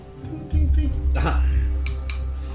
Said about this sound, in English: She taps the glass, and then you see the liquid, which just looked like pureed tentacle.